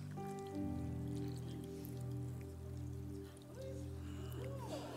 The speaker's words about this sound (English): Moody, with a smile, grabbed this jug of water. And he filled up the glass.